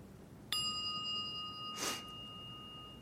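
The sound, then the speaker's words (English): A meditation bell is struck once, its bright, clear tone ringing on steadily and slowly fading. A brief soft rustle passes partway through, and no one speaks. “And I'm going to ring the bell, and I just want you to, like, just hear the bell.”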